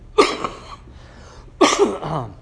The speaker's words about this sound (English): Because if anybody has the gift of healing, I would really appreciate you healing my cough. It's driving me crazy.